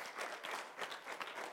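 An audience claps hands together in praise of the Lord, a dense steady patter of many overlapping claps with bright, sharp texture and rippling swells, no voices heard over it.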